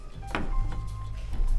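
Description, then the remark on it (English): Heard over a phone line: a single sharp knock-like thud of a door closing over a steady low rumble, after someone sits up from a chair, followed by faint scattered bumps and shuffling as footsteps approach the phone. “You hear commotion on the other side of the line, like someone sitting up from a chair, a door closing, and then footsteps towards.”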